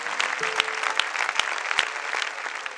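An audience at an Easter service claps their hands in praise, sustained, dense applause with a few louder, sharper claps standing out at a steady pulse over the continuous wash of many hands.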